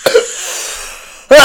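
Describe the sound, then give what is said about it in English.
Close to the microphone, a person who has just lit up and smoked takes a short catch of breath that gives way to a long, raspy exhale, then a sudden loud, harsh cough bursts out at the end. “Coughing to the mic.”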